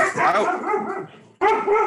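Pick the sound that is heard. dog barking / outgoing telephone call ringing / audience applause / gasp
dog barking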